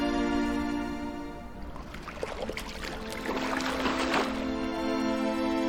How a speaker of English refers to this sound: As the woman finished watering the camels, Eliezer presented her with a gift of gold bracelets and jewelry.